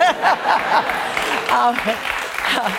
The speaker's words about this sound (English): I heard the crowd.